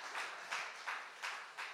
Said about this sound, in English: It was, yeah, you can clap. That's a good place to actually clap. Come on.